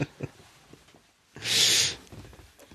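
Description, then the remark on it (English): A single high, shrill squeak from a squeaky dog toy left over from K9's days, about half a second long, loud against faint background rustling and soft low thumps. “Yeah, I heard something squeak, It's a dog toy she had left over from K9's days.”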